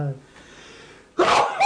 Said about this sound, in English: He sneezed louder.